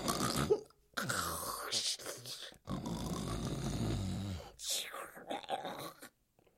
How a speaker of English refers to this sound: Her snoring was almost as bad as her opera singing.